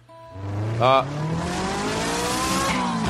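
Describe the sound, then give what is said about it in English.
A voice imitates a car engine starting with a short sputter, then a steadily rising, drawn-out revving hum as it pulls away, loud for about three seconds. “Let me start it up. Sorry, but this is a real fucking sketch. Can you picture the car? Okay. Let's go.”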